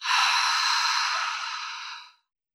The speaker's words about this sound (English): Last time, breathe in deep through your nose and let it all go through your mouth.